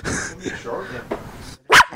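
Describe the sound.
People talk for a moment, then their dog, being protective of one of them, lets out a single loud, sharp bark, cutting in right after a brief pause.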